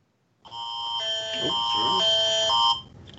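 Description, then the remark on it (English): A loud, harsh fire alarm blares in one continuous electronic buzz for a little over two seconds, then cuts off abruptly, with a voice faintly audible beneath it. “He's so hot he's setting off the fire alarm.”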